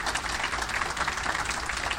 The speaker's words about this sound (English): Let's give another round of applause again. Thank you.